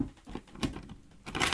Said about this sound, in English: That's not a pen. Nope, those are my keys.